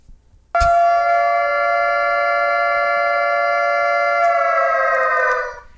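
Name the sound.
air raid siren wailing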